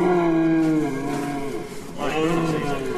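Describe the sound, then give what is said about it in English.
A huge male deer with antlers, kept in a barn, gives two long, loud bellowing calls, low and moo-like with a rich harmonic tone; the second call starts with a rising swoop. No one talks over them. “Yeah, he's not like a normal deer you see around this part of the world at all, is he?”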